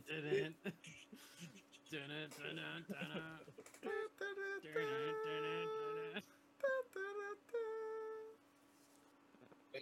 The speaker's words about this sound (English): Some fucking bird.